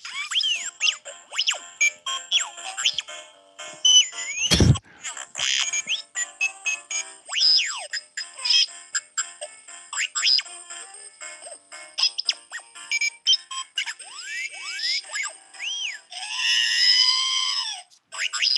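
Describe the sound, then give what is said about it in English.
A musical greeting card that came in the mail, played into a microphone, plays a tinny tune of chirpy R2 robot beeps and whistles, thought to be Jingle Bells, with quick rising and falling sweeps, one sharp click partway through, and a warbling buzz near the end. “I don't think this is going to work, but my son got a card in the mail. I'm going to try it. It has some music with it.”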